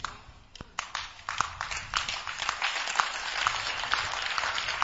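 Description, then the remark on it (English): An audience claps, starting with a few scattered claps that quickly build into dense, steady applause. The sound is moderately loud, with no one speaking. “Those who are clapping, you are being delivered from going to hell.”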